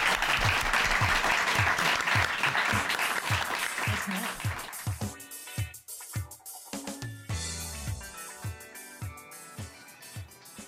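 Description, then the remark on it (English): An audience at the Torpedo Theater in Amsterdam claps loudly in a dense, steady burst for about five seconds, then the applause fades as music with a regular thumping beat and sustained tones takes over. “And have a now great you're allowed to clap.”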